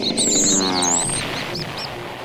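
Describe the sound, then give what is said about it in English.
A common starling calls in a rapid, chattering stream of whistles, squeaks and buzzy notes, loud with no talking, ending in a few short rising chirps. “In North America, the common starling competes for habitats with our native birds, and it's considered to be an invasive species.”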